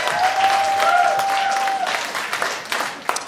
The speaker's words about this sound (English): All right. Brian Hocker, keep it going. Clap your hands for Brian Hocker.